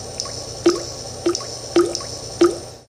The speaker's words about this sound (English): The mirror in the room began to liquefy.